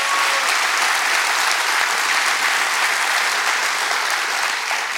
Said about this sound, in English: Clap your hands real big all over this house.